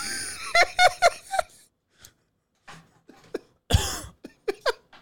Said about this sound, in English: Yo, did you just turn your head to just cough directly into the mic? You wanted to make sure they got that?